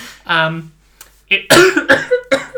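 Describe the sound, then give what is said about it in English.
A person lets out a short vocal sound, then breaks into a loud fit of three or four harsh, rapid coughs in quick succession. “I just got a bit of a cough there.”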